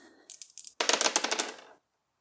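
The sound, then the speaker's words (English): Dice rattle and clatter across a hard surface, starting with a few light clicks before a dense burst of tumbling knocks that stops abruptly, with no voices. “Let's see how the dice go.”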